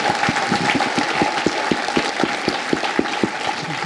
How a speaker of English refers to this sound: So I think that deserves a round of applause. Thank you.